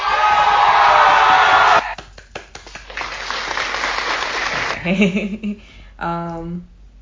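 applause sound effect

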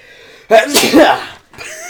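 sneeze

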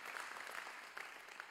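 audience applause

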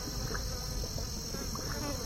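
crickets chirping

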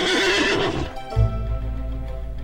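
horse neighing

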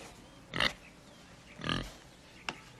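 pig grunting

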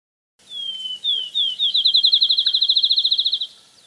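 field sparrow song

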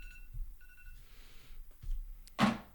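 alarm ringing

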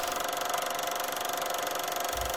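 car engine running

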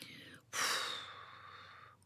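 deep exhaling breath

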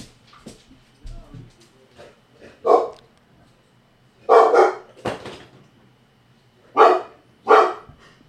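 dog barking

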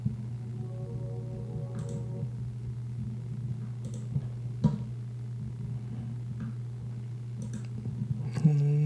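repeated clicking

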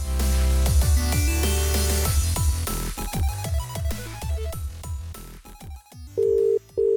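phone call ringing tone

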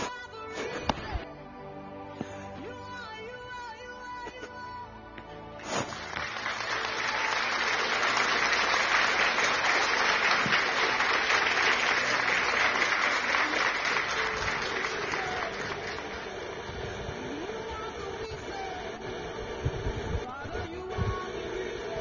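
audience clapping and applause

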